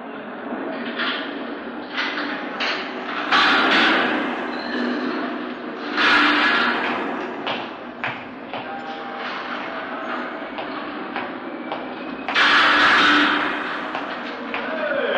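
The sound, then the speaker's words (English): A heavy metal jail cell door rolls along its track as it is locked, with grinding, clanking bursts, ending in loud thuds, with faint voices in the background. “He wants to lock that door”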